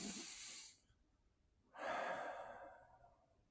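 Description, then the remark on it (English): A single deep breath with a posture adjustment: a short airy inhale, a brief pause, then a longer, louder exhale that slowly fades. No one speaks. “All of it done in a single breath.”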